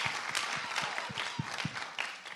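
A crowd applauds steadily, many hands clapping at once in a dense, continuous patter with a few sharper individual claps standing out, heard at moderate distance with no talking.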